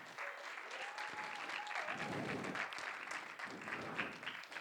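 A church audience breaks into sustained applause for the church's pastor and leaders, a dense, steady wash of clapping with a few cheers and whoops rising over it, holding at a fairly loud level throughout.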